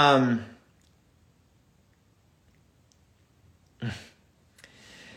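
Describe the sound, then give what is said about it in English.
A short papery rustle as a book page is flipped, followed by a softer brushing swish. The sounds are fairly quiet, after a brief trailing bit of voice at the start. “So I'm just turning the page here”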